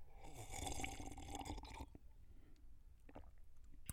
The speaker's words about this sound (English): My slurping was too loud.